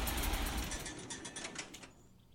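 A tractor engine chugs with a steady, rumbling rhythm, then cuts out and winds down, leaving near silence for the last moment.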